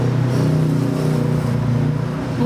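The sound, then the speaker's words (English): A motorbike engine hums steadily, revving gently with slight rises in pitch as the bike comes along slowly and a little hesitantly. No voices. “it's the screenwriter on a motorbike. How about that? Coming along slowly, just a little bit hesitantly.”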